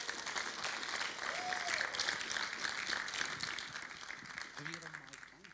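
An audience claps steadily for several seconds, a dense, even wash of hands with no pauses. A brief whoop rises partway through, and a few voices call out near the end.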